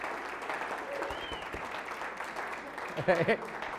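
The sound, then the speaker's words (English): A church audience claps in a dense, steady wash of applause welcoming a visiting superintendent and his wife, with a brief cheer or voice rising near the end of the ovation. “That might be the biggest applause I think I've had.”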